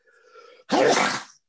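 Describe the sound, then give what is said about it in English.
A single sneeze: a short, faint breathy intake rising into one loud, explosive, noisy burst lasting well under a second, then silence. No talking. “Excuse me. Bless you.”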